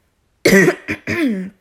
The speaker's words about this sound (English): Excuse me. See, God knew I was to hop on his case, so he had to make me cough because he was like, girl, slow down.